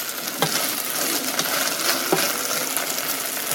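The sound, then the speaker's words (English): Steady sizzling of rice grains sauteing with onion in a hot pan, a dense crackling hiss that runs throughout with a few brief scraping clicks from stirring and no talking. “When it stops sizzling so much, I'll know that it's ready for the next step.”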